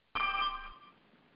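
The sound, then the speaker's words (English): A single burst of an electronic telephone ring from a man's phone, bright and tonal with a low buzzing undertone, fairly loud before it cuts off and fades into quiet background noise. “*6, your phone, please, sir.”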